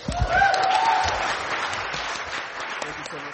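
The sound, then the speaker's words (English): A crowd applauds at the close of a conference panel, a dense wash of clapping from many hands that stays fairly loud throughout, with a brief voice and a whistle-like tone rising over it near the start. “Please give a round of applause for yourselves.”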